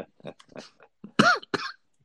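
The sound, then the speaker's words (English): Soft throaty noises lead into two loud, harsh coughs in quick succession, with no talking over them. “been coughing quite a bit, and he said he wasn't going to cough”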